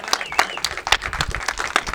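A church audience claps steadily for the worship team, many hands producing a dense, continuous patter of applause that fills the room at moderate loudness, with no one speaking over it.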